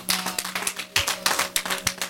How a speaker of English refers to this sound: Can you give the Lord a hand clap for this word?